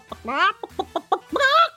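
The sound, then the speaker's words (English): An electronic toy chicken clucks, mixing short choppy clucks with two longer, rising squawks in a quick, uneven burst that stands on its own, without talking. “So the chicken is already on, so that counts as an action.”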